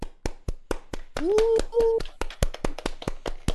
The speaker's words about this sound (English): Round of applause for our boy.